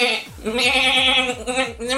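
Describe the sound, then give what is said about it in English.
A human voice imitates the bleat of a Damascus goat in one drawn-out, quavering call lasting about two seconds, loud with a shaky, trembling pitch. “That is what a Damascus goat sounds like, exactly. You all thought that was an impression.”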